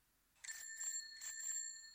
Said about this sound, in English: Bicycle. Little bicycle bell. How fun.